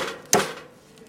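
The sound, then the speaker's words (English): A single sharp metallic whack of a hammer striking a can, bright and ringing, with a short tinny decay fading into a low background hiss. “I don't know what step this is on, but next you whack the can with the hammer.”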